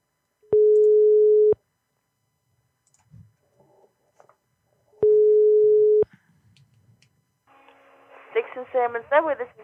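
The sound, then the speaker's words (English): A telephone ringback tone sounds twice, each a steady, fairly loud low buzz lasting about a second with a pause between, then a person begins talking as the call to a Subway restaurant is answered. “All right, let's call another Subway.”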